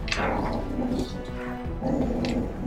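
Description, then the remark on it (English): A person makes a low, rumbling growl with their voice as a sound effect, imitating an animal in two sustained bursts that rise and fade, fairly loud. “The growling has gotten increased from the cave.”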